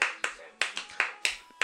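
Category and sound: human body sound, rhythmic hand clapping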